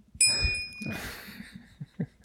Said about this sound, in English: Yeah, I warn you, fellas, this is not going to be the last time the bell will be rung in this 5-minute review.